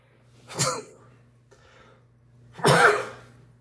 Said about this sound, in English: I have a sneeze coming on. I apologize.